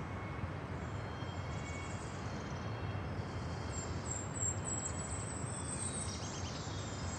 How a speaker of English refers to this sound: Hear that? That harsh cry? It's a peregrine falcon.